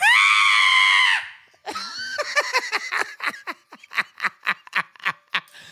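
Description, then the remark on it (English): A man lets out a loud, sustained, theatrical horror-movie scream for about a second, impersonating someone from a movie, then breaks into breathy, rhythmic bursts of laughter that gradually soften. “And I'm impersonating someone from a movie. Yeah, no, you're very good at screaming.”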